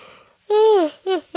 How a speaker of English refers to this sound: I will say that, like, it's a rainy day. Hours, that's why you're yawning.